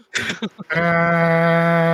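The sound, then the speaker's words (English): A voice imitates a vuvuzela. A few short vocal bursts lead into a loud, steady, low buzzing drone that holds one flat pitch for over a second. “Insert Vuvuzela noise.”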